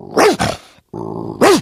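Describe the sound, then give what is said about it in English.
A man's voice imitates a dog, letting out two loud, sharp barks around a low, rumbling growl, the bark-like yelps clipped. “You know, I can make a dog. Want to hear a dog?”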